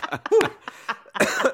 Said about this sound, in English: You made him cough.